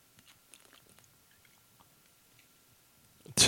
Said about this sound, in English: Sorry, I was taking a sip of water. That was booze.